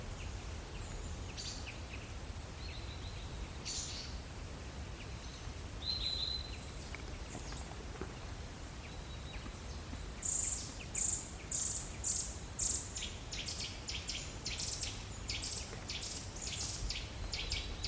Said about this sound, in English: That is a nuthatch.